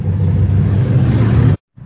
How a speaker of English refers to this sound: That was a motorbike there. That was pretty obnoxious, wasn't it?